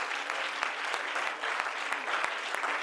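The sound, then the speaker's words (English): An audience claps hands to the Lord during a church service in a steady, dense wash of applause, with a few sharper individual claps popping out above the continuous patter; no one speaks. “Come on, clap your hands to the Lord.”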